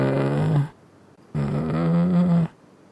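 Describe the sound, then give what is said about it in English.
A voice imitates a zombie's soft moaning with two low, drawn-out groans, a short one and then a longer one after a brief pause. The sound is steady, with no speech. “He has kind of a soft moaning still, but it's like...”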